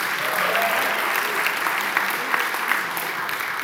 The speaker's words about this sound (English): Clapping is a great transition.